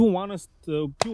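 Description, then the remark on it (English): A single sharp, gunshot-like pop cracks out near the end, cutting briefly through people talking. “Can they hear the gunshots? The pop?”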